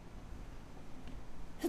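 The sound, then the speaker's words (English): A single quick sneeze bursts out at the very end, a short sharp puff of breath after a stretch of quiet low background hum. No one speaks. “Bless you. Bless me.”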